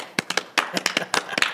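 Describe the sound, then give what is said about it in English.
Two people clap together to welcome a guest for about a second and a half, a dozen or so sharp, bright claps in uneven, overlapping rhythm, fairly loud with no voices. “Two man audience clapping.”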